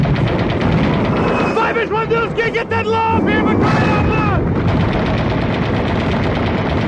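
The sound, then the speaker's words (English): Loud, dense machine gun fire rattles continuously in rapid bursts at a hot helicopter landing zone, with men shouting urgently over the din partway through. “That bird got lower and lower when suddenly, almost from out of nowhere, incoming! Return fire!”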